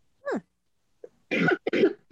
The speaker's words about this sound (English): And the coughing.